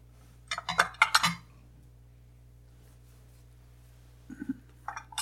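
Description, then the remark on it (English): A small bell is picked up and handled, giving a quick burst of bright metallic clinks and jingles, then a pause before a few softer clinks near the end, with a low steady hum underneath. “But it's like, I don't really have a bell here. Yes, I do.”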